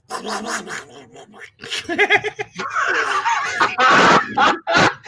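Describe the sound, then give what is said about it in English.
A voice does a squawking, raspy Donald Duck impression with a South African accent, a few seconds of buzzy, garbled honking syllables in quick bursts, fairly loud, with no clear words. “I think I can talk a little bit like Donald Duck, but I'll have to practice it.”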